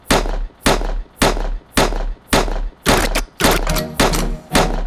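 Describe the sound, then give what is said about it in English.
A rapid series of loud gunshot sound effects, about nine sharp blasts fired in a steady rhythm roughly twice a second, each with a short booming tail, with no talking. “Lick some shots in the air.”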